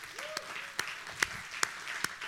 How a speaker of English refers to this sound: The last part of verse 16 serves to remind us of something pretty amazing. For we are the temple of the living God. Let's just give God a hand clap of praise for that.